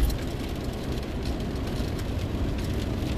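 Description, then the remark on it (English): Rain patters on a car windshield in soft, scattered ticks over a steady low rumble like an idling engine, on a rainy Monday morning, 30 November 2020. The noise stays even and moderately loud throughout, with no voices. “It's rainy, as you can hear the pitter-patter on my windshield.”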